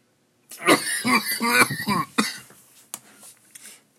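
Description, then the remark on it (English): A harsh coughing fit after taking a bad hit of marijuana smoke: a quick run of raspy, strained coughs, followed by a few scattered, quieter coughs and throat clearing as it settles down. “Does anyone else cough on their live fucking shows?”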